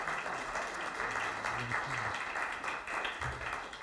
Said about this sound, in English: Just give him a round of applause.